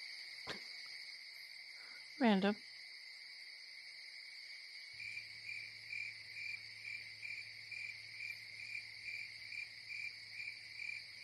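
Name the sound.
crickets chirping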